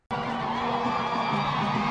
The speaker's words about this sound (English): In the country's capital, Juba, Pope Francis was greeted by thousands of people cheering and dancing as he was driven from the airport into town.